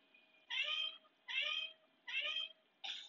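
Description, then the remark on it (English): A cat meows several times in a steady, evenly spaced rhythm, each meow bright, with brief quiet gaps between them and no talking, in a Meow Mix cat food commercial. “Two meows for the new second flavor combination.”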